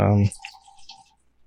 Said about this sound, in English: Sorry, I got to pour myself another drink.